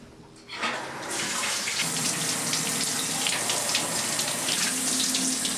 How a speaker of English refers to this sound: I've been watching you take a shower for the past 40 minutes. Think of all that water you're wasting.